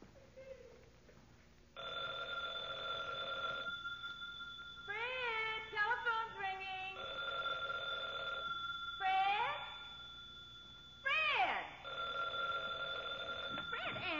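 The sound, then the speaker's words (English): A telephone bell rings in several long, loud bursts, separated by short pauses filled with a cat's insistent meows. No one speaks. “Answer the phone when I...”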